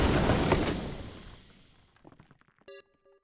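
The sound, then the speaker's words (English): A pastry cannon fires with a loud crashing burst that rumbles away over a second or so, followed by scattered clattering bits and a short bright ding. “It's a pastry cannon.”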